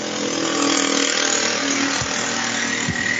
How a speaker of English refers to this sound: The hell was that? Sorry, the kids like to drive that ride their little motorbikes. What, through your front room? Street. No, out on the street.